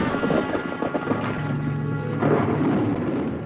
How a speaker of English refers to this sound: Ooh, a little bit of thunder here on a Friday, top of the hour it is.